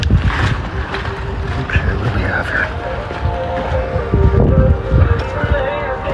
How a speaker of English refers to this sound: That car you hear leaving is actually Isabel leaving the grocery store parking lot.